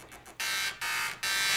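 A dot matrix printer buzzes out a tune: a few short, faint rasps, then three long, loud, harsh buzzing notes separated by brief gaps, with no voices.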